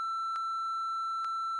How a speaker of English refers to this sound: And there's just going to be, like, a long beep. And it's going to confuse everyone.